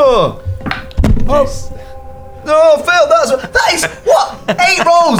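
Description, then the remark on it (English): Dice are banged down onto a table with one sharp thunk during a tabletop role-playing game, surrounded by animated voices talking and exclaiming. “Bang dice.”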